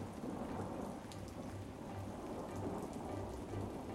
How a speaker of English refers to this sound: If I look on the radar, it just says it's raining.